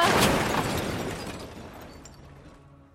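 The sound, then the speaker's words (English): A car crash sound effect played on Absolute Radio: a loud, harsh impact with crunching, shattering noise that rattles on and gradually fades over a few seconds, with no voices. “Oh, no, hang on, that's a car crash, hang on.”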